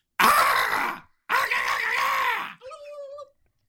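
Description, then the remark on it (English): A person imitates a chicken, presented as a message from the show's patron, Sir Big Spur: two loud, strained, squawking vocal bursts about a second each, then a thinner, higher-pitched trailing cluck that fades away. No other talking. “Those are definitely chicken noises.”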